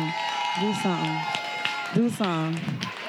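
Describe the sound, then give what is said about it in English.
An audience claps steadily in a dense, continuous patter, with voices speaking and calling out over the applause throughout. “Go ahead and clap it up.”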